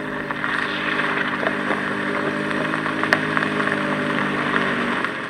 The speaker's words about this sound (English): Suddenly, she heard a rumbling in the distance. Listening intently, she could hear an engine and the gravel beneath its tires as a car drove distinctly toward the house.